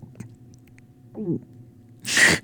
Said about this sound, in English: I wish I could, wait, I was going to try to gulp really loud into the microphone.